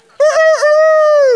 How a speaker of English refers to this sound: The rooster crows. How's that for a bird, huh? How's that?